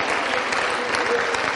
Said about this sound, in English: Give the Lord a clap offering tonight. Give him praise.